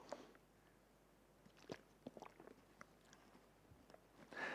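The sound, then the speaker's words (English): Someone takes quick, quiet sips of water during a sermon, with soft slurps, small wet mouth clicks and a swallow scattered across a few seconds. No one speaks. “I'm going to have a quick sip of water and we'll pray and then get on with it.”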